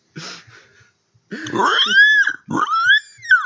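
A pig grunts and oinks: a short rough grunt, a pause, then two loud, drawn-out squealing oinks in quick succession.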